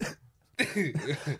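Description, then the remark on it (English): A brief cough, a short pause, then a longer, harsh run of throaty coughing from a person with flu, fairly loud, with no talking. “Bro, I can't stop coughing.”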